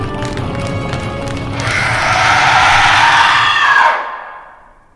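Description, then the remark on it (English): A truck comes to a stop with a loud, shrill, animal-like screech, almost like a horse's whinny blended with squealing brakes, swelling over a low rumbling clatter for a couple of seconds, then cutting off abruptly into silence. “It does, with a horrible biological screech.”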